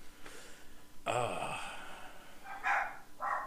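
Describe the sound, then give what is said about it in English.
A dog lets out one sharp, close bark, followed by a couple of soft, breathy exhalations like sighs against a quiet background. “you got to quit sighing. It makes my dog.”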